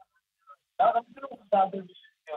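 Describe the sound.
Tinny, narrow-band television sound leaking through a phone line: a few short bursts of muffled voices, thin and faint, with brief gaps between them.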